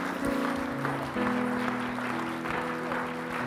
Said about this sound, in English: One, two, three. Let's stand. Let's give them a clap.